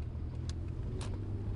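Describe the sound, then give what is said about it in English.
A car drives along a city street in San Francisco behind a GMC, with a steady, low engine rumble throughout, broken by two brief hissing swells of road or passing-traffic noise; no one speaks. “I also don't know what this GMC is doing in front of me.”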